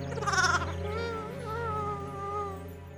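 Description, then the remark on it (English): A lamb named Oscar with a broken leg bleats in one long, quavering cry that wobbles in pitch and lasts a few seconds, fairly loud and alone with no talking. “How does a shepherd mend a broken lamb's leg?”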